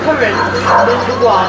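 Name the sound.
dog barking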